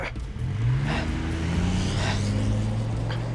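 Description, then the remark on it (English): A truck engine revs hard as the driver floors it and accelerates away, its low rumble rising steadily in pitch as it climbs through the gears, loud throughout with no voices. “The third shot missed, and as McElroy was reloading, Romaine climbed back into the truck and floored it out of there.”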